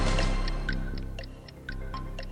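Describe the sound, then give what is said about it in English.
A steady countdown timer for a quiz game ticks at an even pace, about four clicks per second, crisp over a low background hum, with no voices. “Oh, start the clock.”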